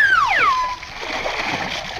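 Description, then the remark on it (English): A descending whistle-like tone slides down, then a loud splash as a person is lifted and thrown into a swimming pool by a group of friends, followed by a second of churning, sloshing water. “Come on, fellas, in with them. Put me down.”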